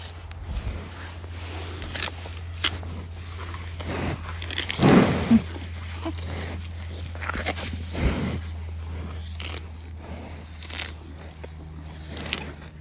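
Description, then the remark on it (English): Repeated crunching and tearing of grass as hungry cows munch steadily on a big patch of grass, with irregular bites over a constant low hum; no one speaks. “Cows are hungry today.”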